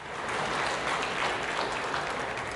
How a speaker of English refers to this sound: He left in the middle of the Medal of Honor ceremony. There was a long applause.